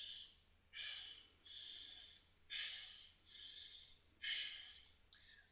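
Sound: rhythmic deep breathing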